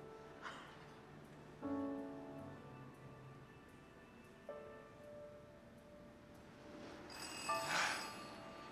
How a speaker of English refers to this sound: I assume I'm supposed to answer that phone.